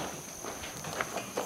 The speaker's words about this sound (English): As we walk through the stables,